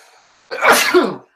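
A single loud sneeze bursts out after a brief quiet moment, sharp and breathy with a quick nasal tail that fades within a second.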